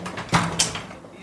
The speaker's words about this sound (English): opened the door leading out onto the balcony. Wow, beautiful balcony.